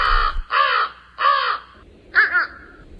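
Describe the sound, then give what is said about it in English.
Harsh, raspy calls of the bird some call the blue crow, though it is not actually a crow: three loud, evenly spaced squawks, then a shorter, choppier cry. No one speaks. “And then there's the bird some call the blue crow, although it's not a crow”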